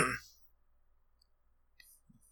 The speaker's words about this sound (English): Sorry, that was a tangent, and then you coughed.